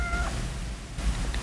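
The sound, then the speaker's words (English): A kitten gives a couple of short, high-pitched meows, one at the start and a faint squeak near the end, over a steady low background rumble. “Castillo notices the kitten. What's that doing here? Evidence.”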